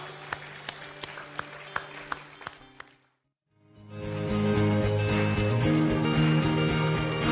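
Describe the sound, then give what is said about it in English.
Congregation applause for God at a Baylife Church morning service, sharp, steady claps over sustained organ-like music, a brief silence, then the music swells back in, fuller and louder, with a broad wash of noise. “Hey, come on, let's give God a great big applause this morning.”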